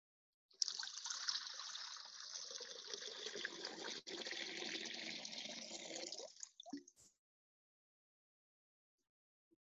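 Gathered waters are poured together into a bowl for about six seconds, a continuous splashing gush that tapers off with a few final drips, then silence.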